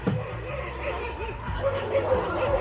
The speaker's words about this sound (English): Dog's saying hello. Yeah. Man. Must have been a long... Must not see each other in a while.